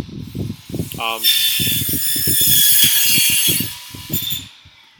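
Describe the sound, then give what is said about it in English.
A power saw whines loudly through a cut for about three seconds, a harsh sustained buzz that rises in and tapers off, with muffled voices running underneath. “That saw break was brought to you by Autobahn.”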